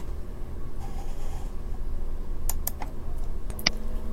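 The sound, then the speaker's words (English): A short burst of keystrokes on a computer keyboard as a folder name is typed, about half a dozen crisp clicks in quick, uneven succession over a steady low background hum, with no voices. “Next, type in the folder name and press Save.”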